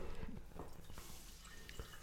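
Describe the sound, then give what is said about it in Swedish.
Wine, a DOCG wine, trickles and splashes quietly into a glass, with a few soft drips and small clinks over about two seconds, faint, with no one talking. “Så nu häller jag upp lite.”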